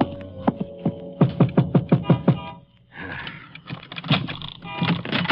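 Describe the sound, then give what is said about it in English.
A man in a leather windbreaker knocks on the office door of Harry Cashman's used car lot in Central City, Texas: a few scattered raps, then a quick run of about six firm knocks, followed by softer irregular thumps and rustling, with no voices. “A man in a leather windbreaker crosses the lot, slipping between the cars for sale, and knocks at the door.”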